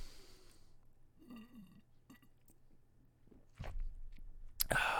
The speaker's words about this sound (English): Another little sip of the Modelo Especial. Just as good as ever.